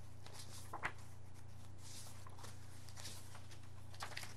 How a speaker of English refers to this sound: So, without any further ado, except my turning the pages here.